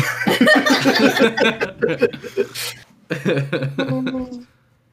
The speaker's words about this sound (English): I clear my throat and soot comes out.